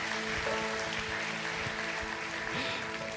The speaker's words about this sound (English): I know your hands are getting sore from clapping, but help me just celebrate one more time and praise God for what he's done.